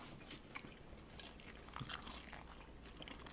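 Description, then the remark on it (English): A crisp crunch of teeth biting into food, followed by wet chewing sounds over a steady low background hum, with no talking. “Good crunch”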